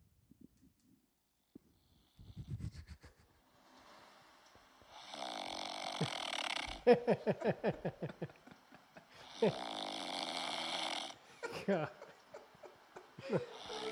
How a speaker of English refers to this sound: Let's hear it. Let's hear the snoring. Oh, you want it? It's pretty fierce. Will the mic pick it up? Yeah, I think so. Listen to this.